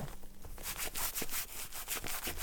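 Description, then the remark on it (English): Crinkling, shuffling rustles of a deliberate crinkle shuffle made with the microphone moved down: after a brief quieter start, a steady run of loud, scratchy bursts repeats roughly every third of a second, with no talking. “Do you want me to, like, move the mic down and, like, do, like, a crinkle shuffle?”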